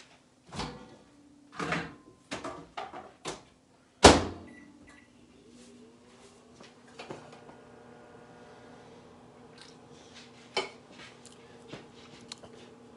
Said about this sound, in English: So you just have to stir it up. And then microwave. So here we go, 3.5 minutes.